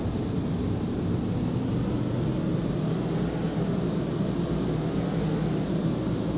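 A steady, low whooshing roar of wind sound effects made in a recording studio for an album track, continuous and even throughout, with a deep rumbling body and a faint airy hiss on top; no voices are heard.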